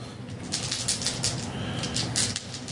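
Crow wings flap in a steady, rapid rhythm of soft whooshing beats, moderately loud, with a low hum underneath and no voices.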